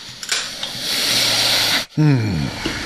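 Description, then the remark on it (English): A dental drill whirs with a shrill, steady, hissing whine for nearly two seconds, then cuts off abruptly and a person's voice briefly follows. “Or at some point every day for the rest of your life, you're going to hear a dental drill.”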